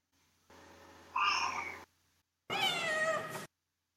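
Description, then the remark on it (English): Two voices say a cat's meow one after the other, showing different ways to pronounce it: the first a drawn-out call that swoops upward, the second a brighter, wavering meow, both sung clearly with a short pause between. “Whether we want to say meow or meow with a J glide, we have choices.”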